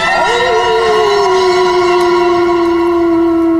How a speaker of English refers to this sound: The third time they heard the wolf, the howl was far too close.